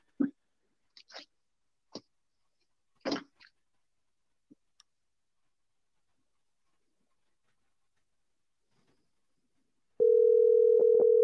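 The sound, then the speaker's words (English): A few scattered clicks and taps, then quiet, before a loud, steady phone ringing tone starts near the end and continues unbroken to the close. “Oh, it's ringing.”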